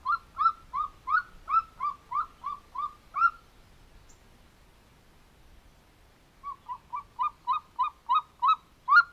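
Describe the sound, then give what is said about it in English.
An eagle's chuckling call: two rapid runs of about ten sharp, squeaky notes each, separated by a brief pause, heard clearly with no one talking. “you never see an eagle sitting there singing a beautiful song. They sort of have a funny little chuckle that they give.”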